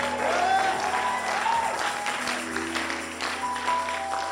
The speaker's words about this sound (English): Give God some resounding shout and clap in the house.